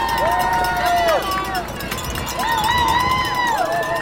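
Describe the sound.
A boisterous crowd of Boston Marathon spectators in Boston cheers loudly and continuously, with overlapping shouts, whoops and rising and falling voices over a dense roar of clapping and chatter.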